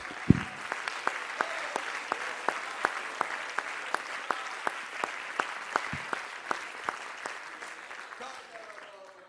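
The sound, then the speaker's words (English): An audience claps hands together in a steady, even rhythm, sharp beats roughly twice a second over a continuous murmur of crowd voices, fading slightly at the end. “Clap your hands in this.”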